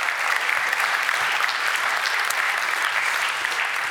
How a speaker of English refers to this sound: So AJ, good friend of mine and a local hero. Let's give AJ a round of applause, even though he's not here.